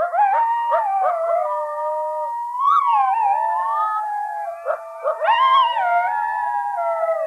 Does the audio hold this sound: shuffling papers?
no